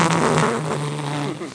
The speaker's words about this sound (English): You're not just going to put that sound effect in? No. That was a real fart, ladies and gentlemen.